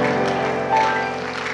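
A church audience claps their hands to the Lord in a dense, steady wash of clapping, with sustained musical tones running underneath at an even, fairly loud level.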